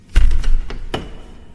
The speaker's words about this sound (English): He seems to just glide out. Then the door shuts.